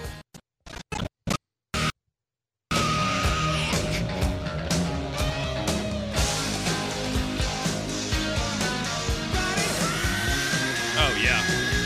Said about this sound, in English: But about 2 minutes and 40 seconds in, he hits 3 screams in a row, and I think that might be it. Let's hear him.